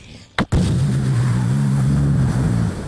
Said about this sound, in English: Let's do a small explosion. Maybe.